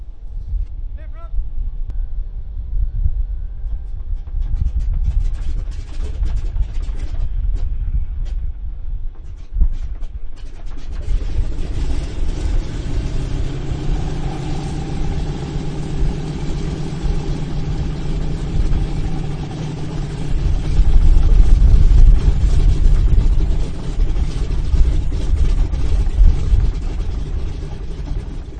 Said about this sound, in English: Well, you heard the Merlin, so now have a listen to the entirely different sound of the Dakota's twin Wasp engines spluttering into life